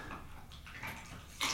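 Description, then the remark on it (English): Wet chewing and crunching sounds of a dog gnawing on a bone come in irregular bursts with steady low rumble beneath, ending in a sharper, louder crunch near the end; no one speaks. “It's a dog gnawing on a bone.”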